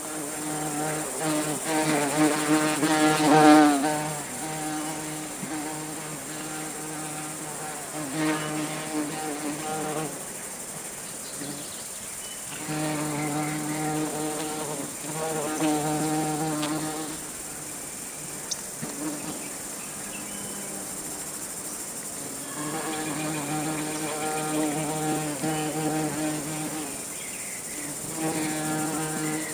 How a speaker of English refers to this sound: And hear the sound of the rusty-patched bumblebee.